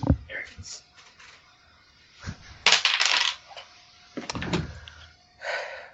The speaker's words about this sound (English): And apparently I can't roll and keep it on the table. One second.